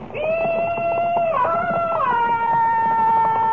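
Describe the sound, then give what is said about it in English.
A loud, drawn-out Comanche war cry yell, given in answer to yells of welcome, held on a high, strained pitch that jumps upward in two steps over a few seconds, over a rough, rumbling noise underneath. “That's an old Comanche walk right, Jimmy.”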